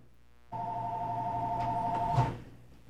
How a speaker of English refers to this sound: We've got a phone ringing here, and we thank you very much.